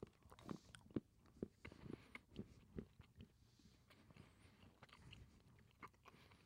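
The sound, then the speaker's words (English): Wet chewing of dark chocolate with almonds, with intermittent crunchy bites, a steady rhythm of mastication repeating every half second or so, with no talking over it. “It gets better with each chew.”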